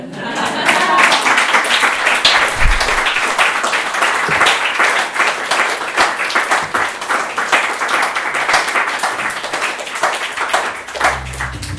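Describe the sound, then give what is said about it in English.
An audience breaks into sustained applause, a dense, steady wash of many hands clapping at a fairly loud, even level for about twelve seconds, with no one speaking over it. “You have my explicit permission to start clapping.”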